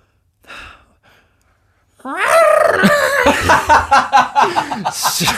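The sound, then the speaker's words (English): A human voice imitates a cry that had been heard, aiming for a goat-like sound: a soft breathy sound, then a loud, wavering, bleating wail that rises and falls in pitch and breaks into shaky pulses toward the end. “I was trying to get the goat kind of...”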